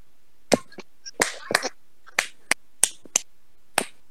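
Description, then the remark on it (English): A string of about ten sharp hand claps in an uneven, off-beat rhythm, some landing in quick pairs, with quiet gaps between and no talking. “You just hear clapping.”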